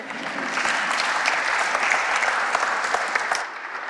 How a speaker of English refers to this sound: Okay, you can clap for my wife.